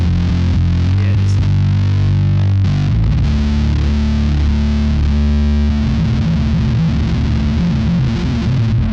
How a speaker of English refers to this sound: It's massive, the two tone. Kill marsupials and elderly people. This is the other fuzz on it. Ooh. That's both fuzzes.